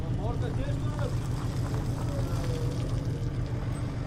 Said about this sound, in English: Later in the day, I went down to the harbor, where work was in full swing, unloading fishing boats of their catch, including haddock, cod, and wolffish.